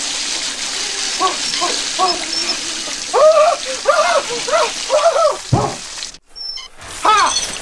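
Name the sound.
shower water running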